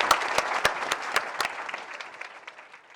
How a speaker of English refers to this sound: So a round of applause for our panelists and for all of you. Thank you.